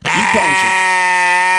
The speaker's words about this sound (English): there he is, Sherman Sheep